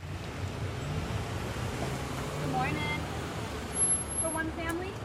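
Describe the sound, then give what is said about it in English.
Steady low rumble of cars of all kinds idling and rolling slowly as they pull into a food bank distribution at a church in a neighborhood northeast of Sacramento, with a brief higher squeal or brake-like tone rising midway, and faint outdoor background hum throughout. “Cars of all kinds are pulling into the Sacramento Food Bank distribution at Arcade Church in a neighborhood northeast of the city.”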